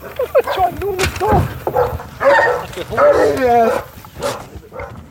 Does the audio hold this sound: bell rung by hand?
no